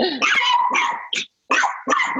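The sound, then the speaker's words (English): The speaker's own dog barks excitedly in a rapid, loud series of yelping barks, pausing briefly before another burst. No one speaks. “Doggy's going crazy.”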